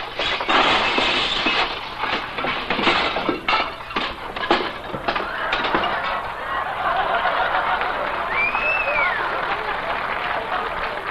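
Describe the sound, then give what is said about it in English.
Dishes being washed in a restaurant kitchen crash and shatter in a loud, rapid run of sharp clattering bursts over the first few seconds, then give way to a steady, noisy rumble. “Wait until Mr. Melonhead sees all those broken dishes.”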